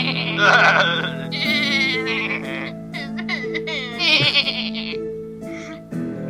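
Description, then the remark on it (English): Several voices imitate goat bleats, overlapping in loud, wavering, quivering cries, one after another with brief dips between them over a few seconds. “You are all goats.”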